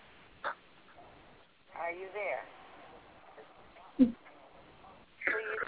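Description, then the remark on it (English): Delayed broadcast audio from a radio or computer left on at a caller's end echoes back through the caller's telephone line into a call-in show: thin, muffled fragments of voice arrive in short uneven bursts over a low hiss, with no clear words. “You are hearing yourself talk.”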